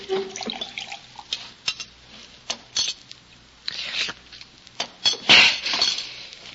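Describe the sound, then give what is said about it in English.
Tea pours and trickles into a glass, followed by a few light clinks and knocks of the glass being set down and handled, with no voices. “Here, now, drink. Drink a glass of tea.”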